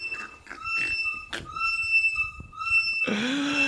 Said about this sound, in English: That whistle tells us we got to get out of here.